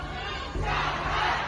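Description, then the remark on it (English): A large crowd protesting against China's zero-COVID policy, chanting and shouting together, a dense roar of many voices that surges louder partway through and stays strong. No single voice stands out. “That call was taken up by others at the remarkable protests against the zero-COVID policy that swept through cities weeks later.”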